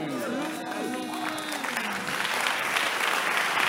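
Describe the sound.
An audience bursts into sustained, loud clapping that swells and grows denser toward the end, with raised voices calling out over it during the first couple of seconds.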